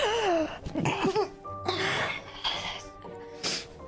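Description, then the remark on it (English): Someone blows their nose: several loud, breathy honks and snorts come in uneven bursts, mixed with snuffly throat sounds and short vocal noises. “Sorry, I just need to blow my nose.”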